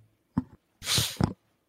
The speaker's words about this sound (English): I'll be thankful when I stop needing to blow my nose, especially when people are listening. It's not very nice, is it? No, it's not very good.